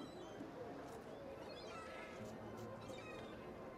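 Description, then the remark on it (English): Faint cat meows drift over a steady wash of ambient noise in a quiet area among stone houses, a few drawn-out cries. “You still get the cats, you still get the seagulls.”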